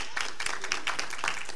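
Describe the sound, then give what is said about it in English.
A church audience claps steadily, dense overlapping handclaps forming a continuous bright patter at a moderate level throughout the short stretch, with no voices standing out. “It's okay to clap.”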